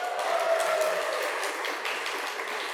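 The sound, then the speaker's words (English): A crowd claps steadily at an event celebrating Steven Rowley's newest book, The Celebrants, a dense, continuous crackle of many hands at moderate volume, with a faint thin tone drifting underneath for the first second. No voices. “We're celebrating Steven Rowley's newest release, The Celebrants. Applause.”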